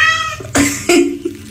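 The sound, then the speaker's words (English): A cat meows twice in quick succession, loud, each call a short two-part vocalization that sounds remarkably like a drawn-out "hello." “So this cat must really sound like he's saying hello.”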